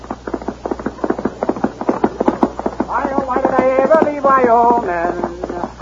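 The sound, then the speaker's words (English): Loud, rapid hoofbeats of the great horse Silverware, from a comedy story of the West, pound in a steady galloping rhythm throughout, joined in the second half by a wavering, high tonal sound over the continuing thunder of hooves. “From out of the spacious west, blazing a trail swiftly through mountain, plain, and stream, comes the thundering hoofbeats of the great horse, Silverware.”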